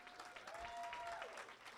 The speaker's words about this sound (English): Everybody, y'all stand up 11, 5 years. You've been here 5 years. Come on, let's give them a hand clap.